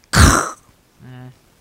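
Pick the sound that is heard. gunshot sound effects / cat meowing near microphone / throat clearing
throat clearing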